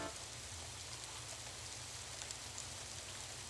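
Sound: rain falling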